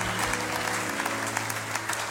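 A church audience claps hands for God and their newly built church tent in a steady, dense burst of applause, many overlapping claps filling the space evenly, with a low sustained tone humming underneath.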